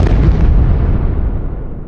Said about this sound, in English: In the distance, you hear an explosion.